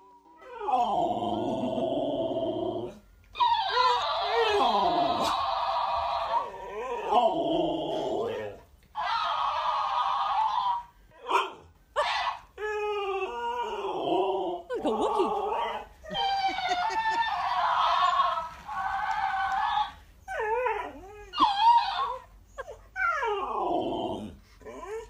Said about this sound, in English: This is what it sounds like when an Alaskan Malamute tries to argue with a talking toy hamster.